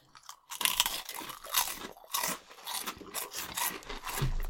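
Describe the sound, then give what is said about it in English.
Loud crunching of crispy Flaming Hot Funyuns snack rings, a rapid series of sharp brittle crunches and chewing that continue steadily for several seconds with no talking. “We did save the best for last crunch-wise. They're very crunchy.”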